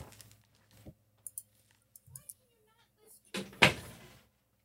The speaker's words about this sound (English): Door is closed. Can't just respect that.